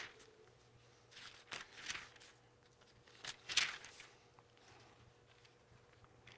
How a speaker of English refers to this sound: You love it when you're turning the pages of your Bible and like 20 turns at once and it passes exactly where you're trying to go.